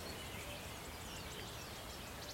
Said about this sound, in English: There he goes. I was really hoping to find a wood warbler today, so that's lovely. I'd heard they were back.